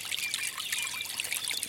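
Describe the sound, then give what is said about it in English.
A stream ripples and trickles steadily, with small bubbling glints of water over a continuous soft rush; gentle, with no voices. “If your path passes water, hear the ripple of the stream, the occasional plop as a fish surfaces or a frog leaps into its depths.”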